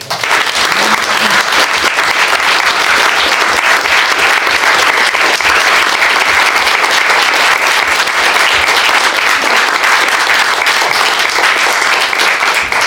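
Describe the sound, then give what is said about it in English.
An audience at the end of an evening book talk applauds steadily, many hands clapping in a dense, continuous wash of noise that stays loud and even for about thirteen seconds without any voices breaking through. “And perhaps a round of applause.”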